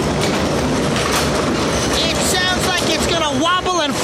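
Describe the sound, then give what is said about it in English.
A garage door opener runs at the push of its button, with a loud, steady mechanical grinding and rattling, as if straining or jamming; a voice speaks briefly over it near the end. “I'm pushing the button so you can hear the noise. Push. It's like it's jamming or something.”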